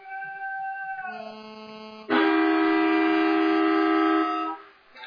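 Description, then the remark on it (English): A half-time siren at a football match between Queanbeyan and Tuggeranong blares in one loud, steady, horn-like blast lasting a couple of seconds, preceded by a quieter tone that slides down in pitch. It sounds just as the ball bounces. No one speaks. “That's how close it was to half-time there. The ball bounced and the siren sounded.”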